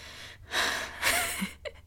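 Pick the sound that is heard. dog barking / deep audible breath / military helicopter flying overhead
deep audible breath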